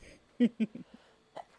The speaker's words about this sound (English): I keep having to sneeze when I'm in the pod. It's like the second time.